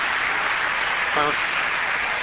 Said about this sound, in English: So if you give them a round of applause for helping out, that would be terrific.